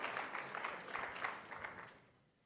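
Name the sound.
round of applause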